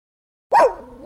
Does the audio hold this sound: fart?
no